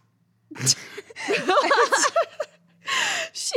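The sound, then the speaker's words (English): A deaf female dog sniffs loudly at a door in a few harsh, breathy bursts, with a run of short, voiced, chuckle-like sounds in between and a final pair of strong sniffs. “She's sniffing at the door loudly.”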